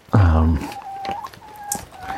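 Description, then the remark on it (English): Chickens cluck as they are let out in the morning while it rains quite hard, opening with one loud, drawn-out squawk before fading into faint, thin calls over a steady background hiss. “Let's let these impatient chickens out.”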